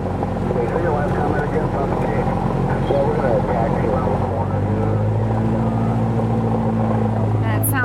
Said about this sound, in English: There's about 5 or 6 seaplanes around us right now.